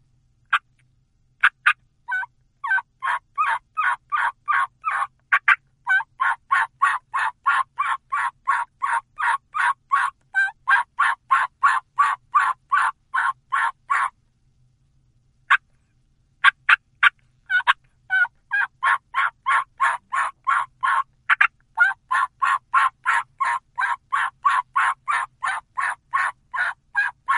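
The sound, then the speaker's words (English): Two long, rapid strings of wild turkey Old Hen Assembly yelps, a call used in spring and fall, growing more pleading as they go, loud, repeating in a steady rhythm with a brief pause between runs and no talking. “And it's a series of yelps that just get more pleading as it goes.”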